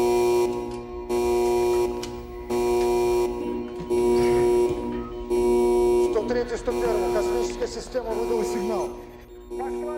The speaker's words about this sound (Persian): یکم بعد از نیمه شب بود که صدای آلارم تو کل ساختمون فرماندهی پیچید.